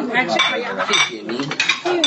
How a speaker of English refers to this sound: We're getting our plates replaced.